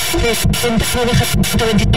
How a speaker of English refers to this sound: Let's go ahead and hit this static.